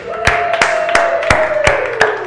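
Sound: audience clapping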